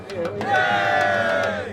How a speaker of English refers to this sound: The crowd whoops and all semblance of normality slips away.